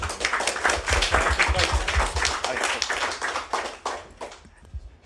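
A round of applause from a small group: dense, steady clapping that keeps up for about four seconds, then thins out to a few scattered claps and stops.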